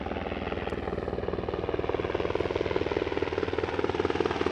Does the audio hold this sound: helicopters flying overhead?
yes